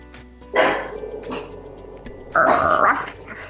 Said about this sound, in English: And my dogs are barking. And my dogs are barking. That is okay. I'll re-record later if I need to.